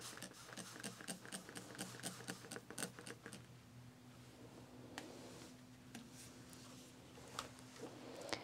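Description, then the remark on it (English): A spray bottle mists water onto a shirt being ironed: a rapid run of short, crisp hissing spritzes as it is pumped over and over fills the first few seconds, then gives way to a low steady hum with a few scattered clicks. “I will do a spraying again.”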